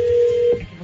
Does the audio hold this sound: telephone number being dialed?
yes